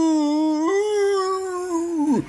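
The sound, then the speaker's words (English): A single long, eerie, inhuman howl from a large, white, unshapely creature as it writhes, loud, holding a steady moaning pitch that lifts slightly partway through before sliding down and cutting off at the end. “It's large and unshapely, and it starts to writhe and give an inhuman howl.”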